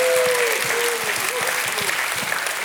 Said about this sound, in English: If you've ever heard the voice of God give you direction and lead you, you ought to give him a hand clap and a shout of praise.